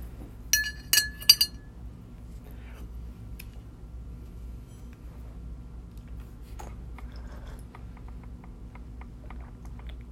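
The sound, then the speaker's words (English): A spoon stirs white chocolate peppermint tea in a cup, striking the sides with a quick cluster of bright, ringing clinks, followed by faint scattered taps over a low steady hum. “Let me just give it one more stir.”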